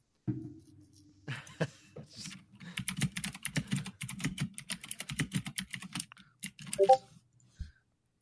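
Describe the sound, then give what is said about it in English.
Rapid, steady clatter of keys being typed on a computer keyboard, fairly quiet, running for several seconds with no one speaking. “I mean, a keyboard is definitely easier than typing on a phone.”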